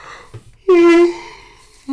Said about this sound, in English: Look how much I'm yawning. I don't know if that's lack of oxygen in my brain or I just need to sleep, you know?